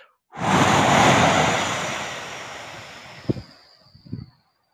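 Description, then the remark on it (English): A long, deep exhale rushes out as a breath is pushed all out during a guided breathing exercise, starting strong and breathy and slowly tapering off over a few seconds, followed by a couple of soft mouth sounds. “Then I just want you to let it go. But this time, nice, long, deep breath. So push it all out.”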